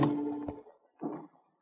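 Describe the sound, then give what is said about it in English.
A door to the main salon, reached from a dark passageway, opens with a sustained, tonal creak that ends in a sharp knock, followed after a short pause by a softer, brief scraping rattle. No one speaks. “I opened the door.”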